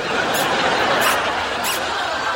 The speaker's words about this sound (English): I mean, what's the big deal? I mean, squeaky shoes are only a problem if you're a mugger.